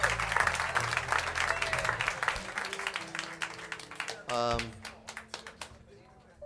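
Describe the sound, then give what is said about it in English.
Steady applause from a room full of people, dense and continuous, with a low hum underneath; the clapping thins out toward the end as a few scattered claps trail off. “We are happy to have you tonight, particularly tonight, because we are recording a live album at the Village Vanguard, so we're glad to have you here to have some of your applause on the album.”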